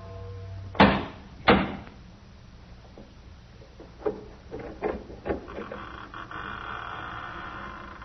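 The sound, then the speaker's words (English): A massive oak door of a chateau opens with two loud thuds, followed by scattered softer clunks and a long, low creaking drone as it swings, with no voices. “In a few moments, my bare feet were padding up stone steps, and I stood in front of the massive oaken door.”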